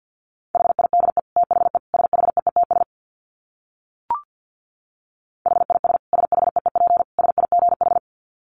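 Rapid Morse code dits at 50 words per minute, a steady mid-pitched tone keyed in fast bursts, heard in two runs separated by a silent pause broken by a single soft click.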